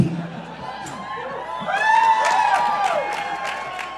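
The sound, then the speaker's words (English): An audience claps steadily while voices cheer and whoop, the rising and falling shouts swelling louder midway and carrying on over the dense, crackling applause. “Is it because you're waiting until we've both introduced ourselves and then applauding for us both?”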